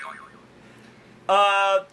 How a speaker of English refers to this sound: Buzzer time!